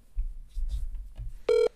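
A single loud, steady telephone dialing tone beeps near the end, lasting a fraction of a second, after a stretch of low, muffled rumbling handling noise.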